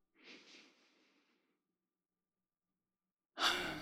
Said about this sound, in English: An audible exhale.